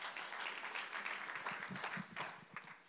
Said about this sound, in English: If you clap your hands, you may be seated.